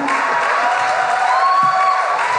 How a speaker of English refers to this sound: The applause is getting less enthusiastic as the...